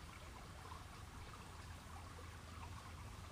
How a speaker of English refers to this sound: And you're just walking along this path, along this beautiful river. You can hear the water.